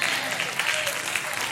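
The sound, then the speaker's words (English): An audience claps together in a dense, steady wash of applause, the many hands blending into one continuous crackle that holds at an even level throughout. “Like, you don't need to clap. I don't want you to clap about it.”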